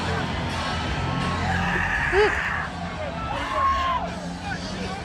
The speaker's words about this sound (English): That's amazing. Somebody's just screaming.